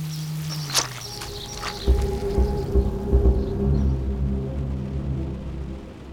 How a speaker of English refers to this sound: Should we retire to someplace with more shelter? The rain's not bothering me.